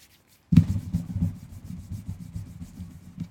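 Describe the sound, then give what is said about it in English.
Steady sanding on wood while making furniture, a continuous rough rubbing that starts abruptly after a brief silence and keeps going in uneven back-and-forth strokes with no voices. “I'm a little busy here. What are you doing? I got a job. Making furniture.”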